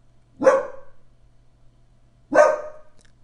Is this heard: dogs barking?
yes